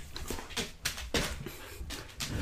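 A puppy pants and whimpers, a run of quick, breathy huffs repeating every half second or so, fairly soft, with no one talking.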